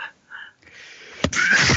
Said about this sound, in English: And then someone sneezed.